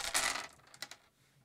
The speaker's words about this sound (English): you get to keep that die and then roll die to add into that